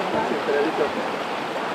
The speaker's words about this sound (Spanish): El sonido del río Magdalena acompañó su experiencia.